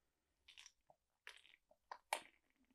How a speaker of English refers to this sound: And I need to take a sip of coffee.